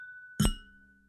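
Several glasses clink together in a toast, a single bright strike with ringing tones that hang and fade for most of a second. No one speaks.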